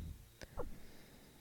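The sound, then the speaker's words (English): A quiet sniff of an 8-year-old whisky in a glass: one quick breathy intake followed by a second short, airy draw through the nose, with soft background noise and no talking. “he's not going to say anything about me sniffing 8 year olds”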